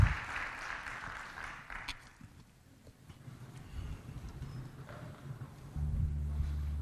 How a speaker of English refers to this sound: Would you give the Lord a good round of applause today?